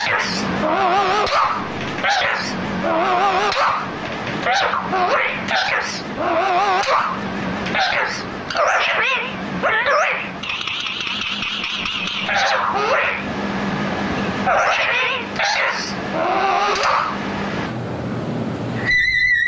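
A parrot's squawks and chirps run through reverb, pitch-shift and pitch-echo effects, with control voltage sent into a delay, forming a dense, loud stream of warbling, gliding calls that repeat and smear into each other for the whole stretch, with no talking.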